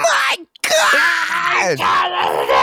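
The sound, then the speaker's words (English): A person imitates commentator Styles's loud, high-pitched shriek after a total elimination, a strained wailing cry broken by a brief gap, sustained for a couple of seconds and harsh enough to clip the microphone. “They hit the total elimination, and fucking Styles peaks the mic immediately with his high-pitched shriek.”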